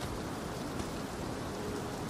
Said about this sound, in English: Alright, so I'm outside in a rainy courtyard. We're having a little look around.